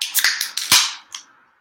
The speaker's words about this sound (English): All right, that was one of our worst ones there. I mean, it's like in succession of who's cracked their beer open, but oh well. Cheers.